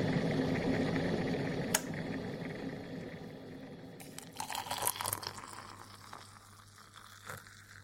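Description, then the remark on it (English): Someone chews and eats a spinach dish: crackly, wet mouth noises with sharper crunchy bursts midway and a final smack, and no talking. “It's just, because you hoovering down that spinach thing before we start again.”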